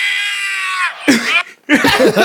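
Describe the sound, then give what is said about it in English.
A man lets out a long, strained, high-pitched yell, then a couple of short excited shouts in quick succession. The yells are loud with no background noise. He is screaming in reaction to a UFC fight won by knockout. “When he's yelling, he's like, ah!”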